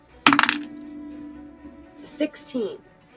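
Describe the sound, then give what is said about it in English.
Dice for a perception check in a tabletop role-playing game clatter onto a hard surface in a sharp, rattling burst that quickly settles. A low hum lingers afterward, followed by a few short, softer bursts of sound. “Roll a perception from outside the door then.”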